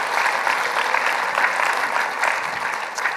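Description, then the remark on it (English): A large church audience applauds steadily in thanks to God, a dense, sustained wash of clapping at a consistent volume with no voices rising above it. “If he has ever done one thing in your life, why don't you give him the biggest round of applause you've given in a long, long time.”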